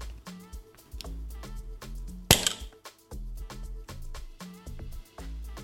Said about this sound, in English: And then I have to push here. I have to push this so that that thing, the glass sphere goes down inside of the liquid.